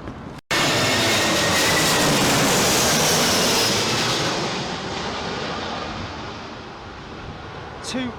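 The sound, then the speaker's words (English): A loud, sustained roar of a jet airplane landing in strong gusting wind during Storm Eunice, with a rushing whine over the blast that eases slightly toward the end. “I mean, it's all pretty much the same throughout, but I think you can hear the joy in this man's voice at hearing this plane land.”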